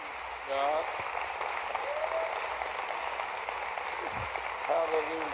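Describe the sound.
An audience stands and applauds steadily for their church's guest prophet, a dense wash of clapping with scattered cheers and shouted voices rising above it throughout.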